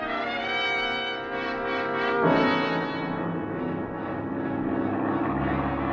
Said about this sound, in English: You nose the plane up for a steady climb and then level off.